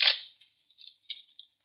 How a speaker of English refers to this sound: Yeah, I hear it. Someone coming through the brush.